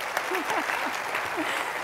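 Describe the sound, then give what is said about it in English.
A crowd applauds with dense, steady clapping that holds an even level throughout, with faint voices calling out underneath. “Go ahead. Let's clap. Let's go. Let it all out.”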